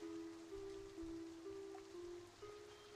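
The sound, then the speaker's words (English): Steady rain falls with a soft, continuous hiss and patter, fairly quiet and unbroken, over a constant low droning hum. No one speaks. “It's raining already.”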